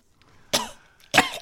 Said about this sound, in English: Just coughs up a little bit more.